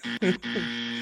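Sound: buzzer sound effect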